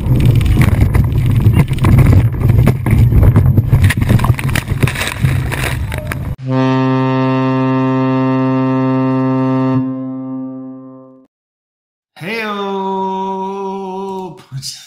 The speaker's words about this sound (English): Let's watch these ladies get slammed on the boat.